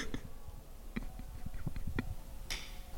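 A dog named Pepper snoring into a microphone, a low, rough rumbling with irregular pulses, ending in a louder breathy snort. No one speaks.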